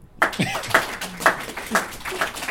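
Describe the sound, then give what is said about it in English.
An audience claps and cheers to vote for Superman as the better back rubber: a steady run of sharp, irregular hand claps over roughly two and a half seconds, mixed with scattered whoops and a little laughter. “Please applaud if you think Superman would be the better back rubber.”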